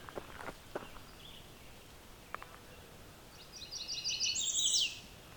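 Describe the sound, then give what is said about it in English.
An American redstart sings a song resembling a Blackburnian warbler's: a high, thin song of rapid repeated notes rising toward a sharp, very high-pitched ending, with a few soft footstep-like thumps earlier and no talking. “So we got a red start that's kind of mimicking the Black Burning Warbler song.”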